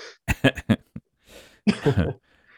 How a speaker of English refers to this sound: I am trying to get to every time I go to speak, like I feel that itch in the back where I just want to cough all over my mic. And I'm like, oh, don't do it. Don't do it. Hold it.